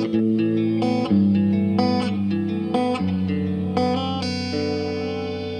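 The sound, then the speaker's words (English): Electric guitar chords ring out through a lush, washed reverb effect from an Electro-Harmonix Oceans 12 dual reverb pedal, notes blooming and sustaining into a long shimmering tail, played alone without any talking. “Provided by our good friends at Electroharmonics. This is the new Oceans 12 pedal.”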